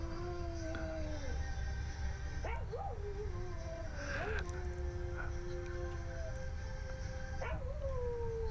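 A dog howls in long, wavering notes that swoop up and slide down several times, sustained and fairly close, over a steady low background sound.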